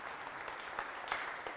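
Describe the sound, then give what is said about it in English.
A crowd claps steadily for a moment, a dense wash of many hands with a few sharper claps standing out, moderately loud and with no one speaking. “Oh, I thought that deserved a round of applause.”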